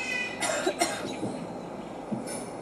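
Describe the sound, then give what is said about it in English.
A pet raven named Mischief imitates a human cough: two short, raspy, breathy bursts in quick succession, clear, followed by a faint rough trailing sound over a low background rumble. “A little cough.”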